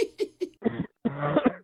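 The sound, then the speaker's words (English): A rapid series of exaggerated, forced coughs from a man faking sickness, three short hacks followed by longer throaty rasping bursts, fairly loud, with no speech. “Oh, here we go with the fake coughing again.”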